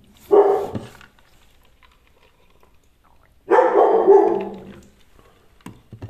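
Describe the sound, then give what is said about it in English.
A dog barks in two separate bursts a few seconds apart, loud and agitated, upset by a conversation, with quiet pauses in between and no one talking. “See, this conversation is even upsetting my dog.”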